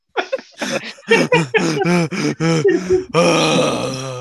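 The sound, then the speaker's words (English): Heavy breathing into a microphone: a quick series of loud, voiced gasping pants with groaning tones, ending in a long, strained, rasping exhale. No words are spoken. “Sounds like you're snoring into the mic or something.”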